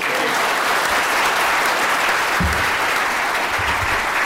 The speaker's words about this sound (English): You have to keep clapping till I get off the stage. No, seriously, keep clapping.